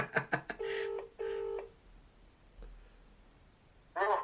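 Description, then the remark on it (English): A quick burst of dialing tones, then an outgoing phone call ringing twice in a double-pulse pattern, followed by a quiet pause before a voice briefly answers at the end. “Oh, it's ringing.”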